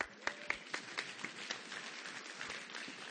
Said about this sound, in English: A light applause. Okay, go ahead and have a seat. A smattering of applause.